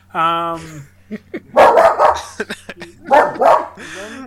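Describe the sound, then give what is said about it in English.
An excited dog lets out a high, whiny yelp, then several loud barks in quick bursts, separated by short pauses, as it sees other dogs outside. “Pepper seeing dogs outside and is getting very excited that at the fact that other dogs exist in the world.”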